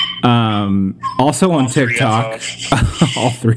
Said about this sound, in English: Your dogs are saying hello. They are.